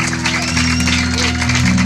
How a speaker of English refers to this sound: Let's give a round of applause, because everyone who prayed that is saved.